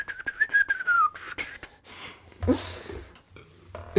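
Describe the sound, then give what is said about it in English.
A person whistles a short, warbling bird-like call with a gliding pitch, imitating bird calls, followed by breathy snorts and soft rustling noises, no speech. “That was impressive. Nice bird noises.”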